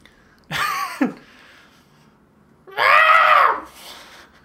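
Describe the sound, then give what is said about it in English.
A person imitates their cat's screaming yowl: a short strained cry, then a longer rising-and-falling wail, voiced slightly away from the microphone, with no other talking. “It sounds like it sounds very identical to like a baby crying in the distance”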